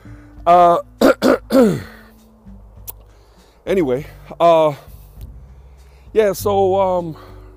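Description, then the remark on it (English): Someone coughs and clears their throat from the smoke of burning leaves while pacing up and down a driveway, in three loud, raspy clusters of several bursts each, with short quiet pauses between them. “It smells very country, but, you know, when I'm pacing up and down the driveway and I'm talking to you guys, it goes down my throat and I start to cough.”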